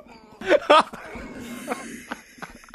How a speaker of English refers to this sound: Got the hiccups? I just had a Coca-Cola in the morning for breakfast,